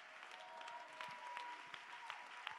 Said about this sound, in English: Everybody clap your hands and give him praise.